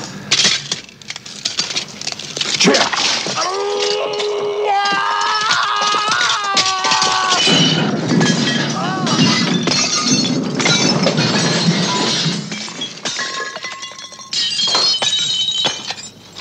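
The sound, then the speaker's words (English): Loud glass shattering in a long, chaotic crash as a man falls against chemical equipment in a health clinic, with bright tinkling shards and ringing tones, then heavier crunching and scattered clinks that continue for several seconds without any talking. “and then he falls against a bunch of chemical stuff and falls down dead.”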